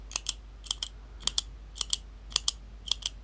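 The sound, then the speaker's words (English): Crisp paired clicks made with the mouth, imitating a pen being clicked on and off, six double clicks in a steady rhythm, clear over a quiet background with no talking. “You did that with your mouth. It sounded just like a real pen.”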